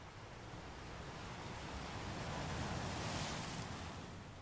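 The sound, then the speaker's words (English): Steady ocean surf rushes onto a shore, a broad continuous wash of noise that swells slightly toward the middle, with a soft breeze in the background and no voices. “The earth and the sea are surrounding you as you feel the flow, the warmth, and endless expanse of sand and water.”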